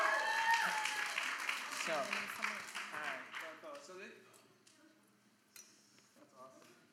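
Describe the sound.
A burst of clapping and cheering from a group that gradually thins out over several seconds, with voices talking and calling out over it as it fades.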